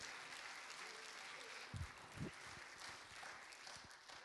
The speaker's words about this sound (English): Clap your hands and give Him praise in this house today.